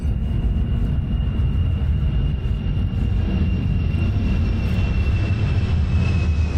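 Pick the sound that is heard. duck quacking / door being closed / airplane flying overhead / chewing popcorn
airplane flying overhead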